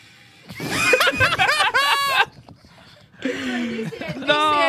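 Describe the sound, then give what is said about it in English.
Someone mimics a revving Ford 98 car engine with their voice in two loud bursts, the pitch climbing and dropping in a growling, strained tone with a short pause between. “…'s making the car noise”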